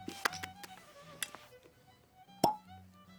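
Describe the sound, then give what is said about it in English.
A cork is pulled from a 750 ml bottle of Dalmore whisky, 40% alcohol by volume: a couple of light clicks and squeaks, then one sharp, hollow pop, with no one speaking. “So, Dalmore, 750, 40% alcohol by volume. And try to open this thing up.”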